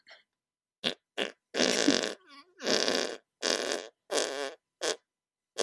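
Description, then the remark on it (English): A rapid series of wet, squelchy armpit farts made by a man without pumping his arms, some short blips and some longer sputtering blasts, loud with brief pauses between them and no talking. “I will armpit fart at you.”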